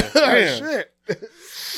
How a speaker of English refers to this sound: Man, this cough. Damn, I'm still coughing. Man, this cough ain't going nowhere.